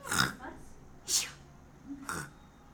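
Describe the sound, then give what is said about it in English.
Someone imitates snoring with three raspy, snorting bursts of breath, roughly a second apart, each short and noisy with a hissy edge. “Do you want to give them your snores?”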